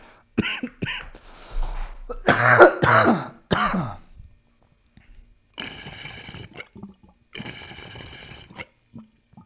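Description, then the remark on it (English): Someone clears their throat and coughs, then a water pipe holding only a little water bubbles and sloshes in two steady bursts, each lasting about a second or two, with no talking. “It's like, it's the noises it makes, it's like sloshing and bloop bloop.”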